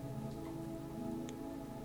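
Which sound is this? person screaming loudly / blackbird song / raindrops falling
raindrops falling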